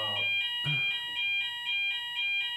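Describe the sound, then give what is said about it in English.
A fire alarm going off at twenty past eleven, blaring in rapid, evenly spaced high-pitched beeps, loud, repeating steadily throughout with a brief low thump near the start and no voices. “Don't speak over the alarm. Why? Should we be evacuating right now?”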